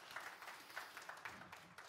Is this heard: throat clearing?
no